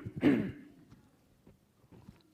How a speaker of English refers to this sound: I'm just going to clear my throat.